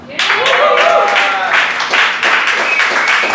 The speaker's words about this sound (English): Applaud him now because you may not like him later.